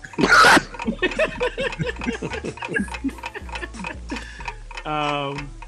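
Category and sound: sound effect, ticking clock timer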